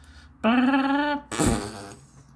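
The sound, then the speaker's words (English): A voice imitates a farting car: a sustained buzzing raspberry followed by a short, sputtering burst, loud with no talking. “Who would pay money to have a farting car?”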